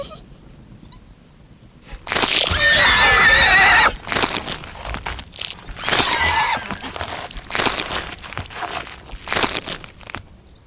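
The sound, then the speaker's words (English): A horse lets out a loud, shrill whinny lasting a couple of seconds, followed by a run of rough crunching and rustling bursts with no one speaking. “What's, What are you doing on that horse?”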